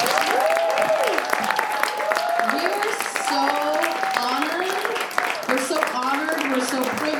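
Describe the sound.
Steady audience applause fills all seven seconds, a dense rattle of many hands clapping, with rising and falling whoops and cheering voices woven through it.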